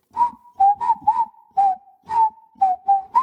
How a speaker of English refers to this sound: And I could also whistle pretty well.